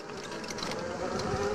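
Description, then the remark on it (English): Motorcycle engines drone steadily, a continuous buzzing, rattling engine noise at a fairly even, moderate loudness throughout, with no talking over it. “Everyone's on a motorcycle.”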